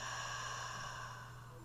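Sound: slow audible exhale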